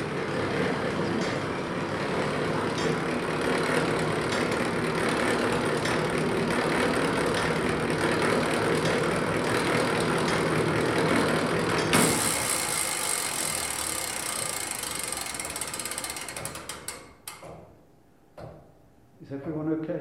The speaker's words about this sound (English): you look from Castletown Square at the castle, what strikes your eye, amongst other things, is the clock on the outside. In this chamber, we're seeing behind the clock face. It's the innards, it's the workings off the clock.